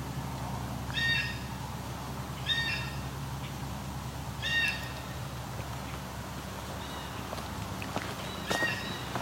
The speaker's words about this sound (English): Blue jays? That's their typical jay call.